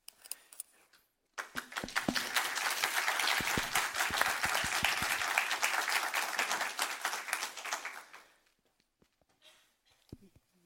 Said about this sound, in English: Well, thank you all for that wonderful round of applause. You beat me to it. Gotta say, it's better to get more than one clap at a time, right?